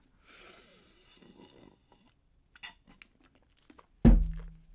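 Someone takes a sip of a drink: soft slurping and swallowing noises with a few faint clicks, then a single loud thunk, like a cup set down. No one speaks.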